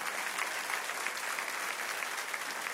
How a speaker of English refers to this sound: What I didn't know is she would frame that, and it's sitting on our dresser today, 20 years later in marriage. Now you can clap, because that's pretty cool.